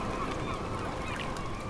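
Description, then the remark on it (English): Gulls call out in harsh, honking cries over a steady wash of background noise, with a sharper, louder squawk breaking in at the very end. “But the graceful gulls, hovering for a moment, swept on in widening circles out farther to sea.”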